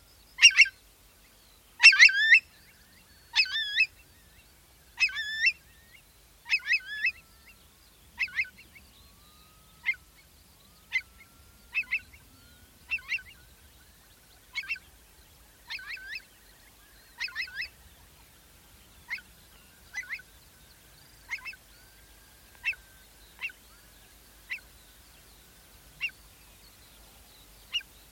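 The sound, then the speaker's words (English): A curlew, disturbed by a person positioning a microphone stand, gives a long series of sharp, high alarm calls, loud at first, then gradually fading and spacing out over half a minute against an otherwise silent night moor. “Unsurprisingly, my presence didn't go unnoticed, as I hear the sound of curlew starting to alarm, but this thankfully calmed down quite quickly, back to the sparse quiet of the nighttime moor.”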